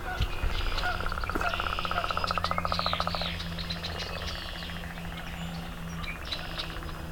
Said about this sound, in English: And we got leopard frog.